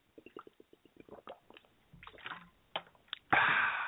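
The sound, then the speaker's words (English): Someone takes a swig of water: a quick run of rhythmic gulps and wet swallows, followed by a loud, breathy exhale at the end. “You just can't beat a good swig of water.”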